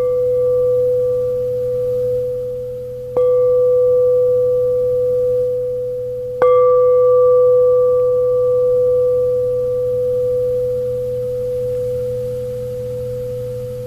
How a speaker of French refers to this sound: Ou même déjà, qu'est-ce qui se passe dans l'esprit, dans le corps, sachant que la cloche va sonner.